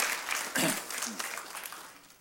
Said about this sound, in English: Let's clap. Clap again. Clap again.